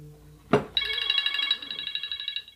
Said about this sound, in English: Okay, got a little bit of a phone call there. Scared the shit out of me.